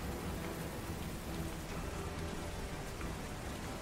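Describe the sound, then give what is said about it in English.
A heavy hailstorm pours down in a dense, unbroken roar, with a low rumbling of thunder underneath. The storm noise is loud, with no voices. “so you just hear in all the hail and all the crashing,”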